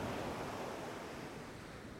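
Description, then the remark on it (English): Steady ocean waves wash continuously in open water, a dense, even rush of surf with no voices, holding at a constant volume throughout. “I can't decide if I want to let the waves take me, to let exhaustion take its toll and softly drift below the surface, or if I want to strip my survival gear off and dive down myself.”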